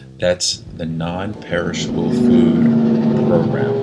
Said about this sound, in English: Wow, that was like a loud truck screaming the noise right behind me. You probably heard that.